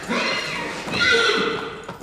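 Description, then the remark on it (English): A horse lets out a long, wavering neigh lasting about two seconds, loud, its pitch rising and falling, while it is manually stimulated for semen collection, with no other sounds standing out. “I just jacked off a horse.”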